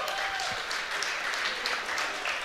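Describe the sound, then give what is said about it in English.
Steady applause from a crowd for new Blue Raiders staff member Coach Eric Wilson, dense overlapping claps forming a continuous bright wash of noise that holds at a fairly even level throughout, with no voices standing out. “Well, the Blue Raiders staff had a new addition this year, and if you would, if you haven't done it already, give a nice round of applause to Coach Eric Wilson.”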